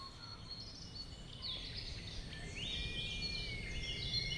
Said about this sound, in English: So I'm sitting in my college garden in Oxford, and I'm not sure if you can hear it, but there is a red kite whistling.